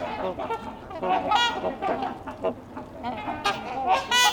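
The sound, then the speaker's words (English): Trumpeter swans calling in a noisy chorus, loud brassy honks overlapping and repeating in quick, irregular bursts, with no talking. “That and their call. You can tell why they're called trumpeter swans.”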